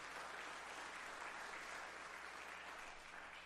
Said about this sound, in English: Come on, give God a hand clap on that one right there, okay?